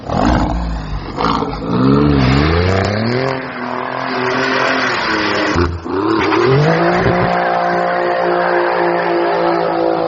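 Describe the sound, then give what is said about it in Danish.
A 510-horsepower, 600 Nm Alfa Romeo on summer tyres accelerates hard, its engine revving loud, pitch sweeping up through several gear changes with brief dips between shifts, then holding a high sustained roar. “Den har biostræk, den har 510 hestekræfter.”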